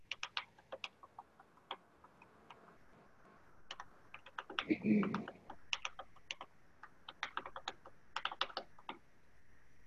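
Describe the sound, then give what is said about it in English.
Clicky typing on a computer keyboard, with irregular bursts of keystrokes and brief pauses, plus a soft thump partway through. No one speaks. “hold on, I'm typing it.”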